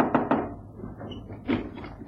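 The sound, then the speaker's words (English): A front door opens as a visitor arrives: two quick wooden clunks of the latch and handle, a brief creaky pause, then a heavier thud as it swings against its frame. “So that's why our front door is unlatched. Lestrade's coming round, is he?”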